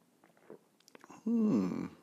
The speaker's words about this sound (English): To the simultaneous sip, go.